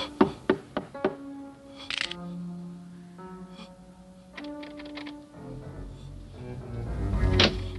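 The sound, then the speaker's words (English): A quick run of four sharp knocks on a stuck door, followed by rattling, creaking and thumping as someone tugs at it. There are no voices, and the scuffling grows louder toward the end. “my door is stuck.”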